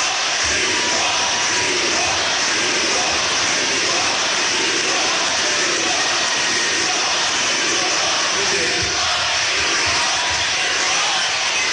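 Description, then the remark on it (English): A large crowd chanting "you won" and roaring continuously for about twelve seconds, a loud, dense wash of many voices with no single speaker standing out. “Crowd chanting, you won.”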